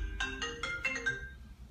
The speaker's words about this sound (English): Yo, your phone's ringing. Tell them I'll call them back.